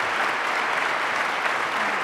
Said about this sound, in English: Now, I want to ask you to join me in giving one more round of applause to the panel.